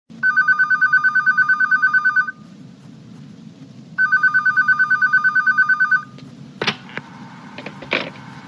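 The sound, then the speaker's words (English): A telephone rings in two long, loud electronic bursts of rapid trilling pulses, separated by a pause, followed by a couple of sharp clicks like a handset being picked up. The call is Orlando phoning Tubbs to tell him where to meet in an hour. “Guessing it's for ransom, Orlando calls and tells Tubbs where to meet them in an hour.”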